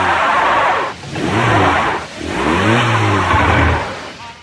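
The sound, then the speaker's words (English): A car stuck in snow revs hard in three loud surges, the pitch climbing and falling each time, with a gritty, straining roar like wheels spinning without grip. No one speaks. “Don't gun it. You're digging yourself in. Just tap the gas lightly.”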